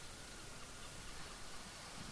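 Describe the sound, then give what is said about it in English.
Video game rain falls as a soft, steady hiss, an even wash of noise with no distinct drops or breaks, and no one speaks over it. “Oh, it's raining.”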